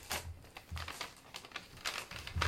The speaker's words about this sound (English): Now, it is Alex's turn. Shake the bag.